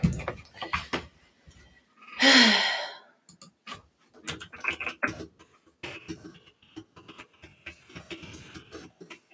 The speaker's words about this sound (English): Probably Googling like super hard questions to ask. For those of you just listening, that was her clicking on the keyboard.